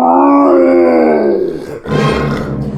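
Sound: grizzly bear roaring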